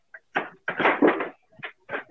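A snake room door rattles and bumps repeatedly in short, uneven bursts as a pet dog shoves against it from the other side, trying to break it down. Fairly loud, with no voices.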